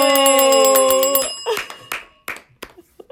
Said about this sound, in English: Are you saying it's time to ring the bell? I think it might be time to ring the bell, because I think there's a lot there.